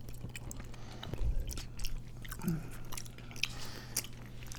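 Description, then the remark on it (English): Wet chewing of fresh, chewy boba pearls from a drink, with soft squishy bites and mouth sounds repeating irregularly over a low steady hum, no talking. “I'm still chewing the boba.”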